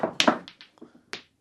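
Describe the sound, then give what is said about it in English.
Snooker balls click together: a sharp, bright pair of knocks at the start, then several lighter taps scattered over the next second, with one more crisp strike near the end. A red is hit and runs down the table, knocking the yellow off its spot into the bottom right-hand pocket. “He hits the red, it comes right down the table, knocks the yellow off its spot.”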